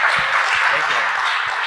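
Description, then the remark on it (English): A crowd at DinoFest applauds the speakers steadily, a dense, hissy wash of many hands clapping at once with a few low thumps underneath. It holds at an even, fairly loud level throughout. “Let's give one more round of applause to our speakers.”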